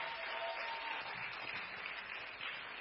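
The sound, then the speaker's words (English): A large audience at a Christmas church service claps steadily, the applause dense and sustained with no breaks, filling a big room at an even, energetic level from start to finish. “Be generous with your hand clap.”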